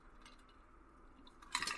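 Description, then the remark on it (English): A water glass gives a short, bright clink near the end as someone takes a sip of water, after a stretch of quiet background with only a couple of tiny taps. No one speaks. “As I take a sip of my water here, excuse me.”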